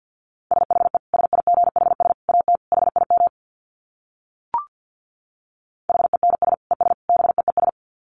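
Rapid Morse code at 50 words per minute in a single steady mid-pitched tone, keyed in quick bursts of dots and dashes. Two runs are separated by a pause broken only by a brief click.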